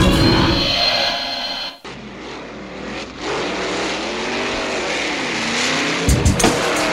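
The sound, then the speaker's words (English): A fast car roars and accelerates, its engine whine climbing steadily in pitch, loud, with a brief rush of noise cutting off early on and no voices. “Ooh, that's a fast car, huh?”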